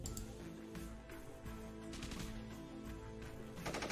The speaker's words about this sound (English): Here we are. Pew pew. There we go. Those are. that's a little weak. Gunshot. Yeah. Here, let me. Let me get some more here.